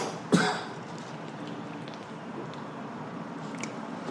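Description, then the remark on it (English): A single short, sharp cough into the microphone near the start, then only a steady low background hiss for the rest of the moment. “And a cough.”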